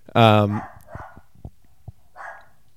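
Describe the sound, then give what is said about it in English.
A dog lets out one loud, sharp bark, followed by a few faint, scattered noises and a soft murmur in the quiet background. “As I was saying, my we paused again because the dog was going crazy.”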